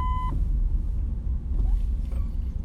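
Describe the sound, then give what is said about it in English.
A single short, steady electronic warning beep from a Jeep's sensor, mid-pitched with a faint buzzy edge, cutting off quickly as a low engine rumble continues underneath. “Sorry about that beep, guys. It's my... One of my sensors on my Jeep is... broke, I think.”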